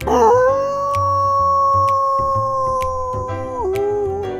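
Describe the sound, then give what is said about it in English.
A long, drawn-out howl, as someone acts like a dog, holds a steady pitch for about three seconds, then dips and trails off, loud over a light rhythmic music bed. “would set the record for acting like a dog for the longest time.”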